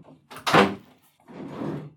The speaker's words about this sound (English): Hang on a second, I've just got to shut my door.